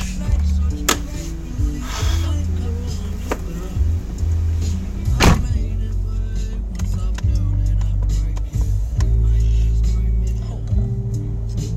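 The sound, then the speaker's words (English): Car engines rumble low and steady, broken by a few sharp thuds like doors shutting, as cars from about ten parked next door idle and move off; faint muffled voices come and go underneath. “There's like fucking 10 cars parked next door.”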